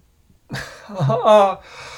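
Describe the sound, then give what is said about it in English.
A single drawn-out yawn, opening with a breathy intake and swelling into a voiced, rising-then-falling groan before trailing off, with no speech. “Sorry. I couldn't hear you actually. I was yawning.”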